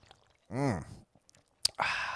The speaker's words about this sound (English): Have all, you know, let me have a sip of all my beverages. I got the cherry blossom.